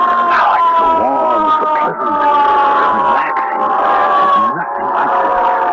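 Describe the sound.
A dense crowd of voices clamors and shouts continuously and loudly as it gathers at a burning building while red fire engines arrive, with a steady wailing tone running beneath the commotion throughout.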